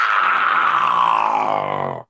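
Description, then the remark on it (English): A human voice imitates a cat for the voice of Bowser, starting with a bright, sustained meow that slides downward into a rough, gravelly growl over about two seconds before cutting off abruptly. “And so I came up with kind of a, starting off with the cat sound and rolling into the growl.”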